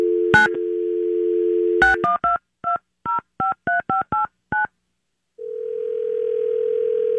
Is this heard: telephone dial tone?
yes